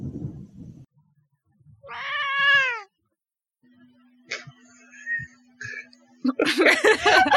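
cat meowing near microphone

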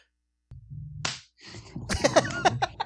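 hand clap

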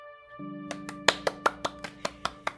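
hand claps

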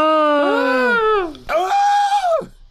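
person screaming

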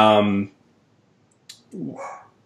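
dog barking

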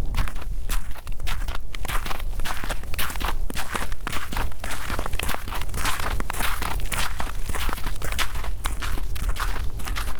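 footsteps walking

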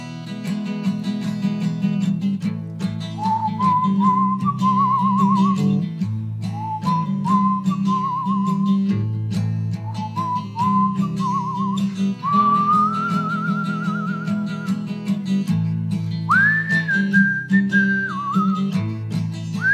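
whistling

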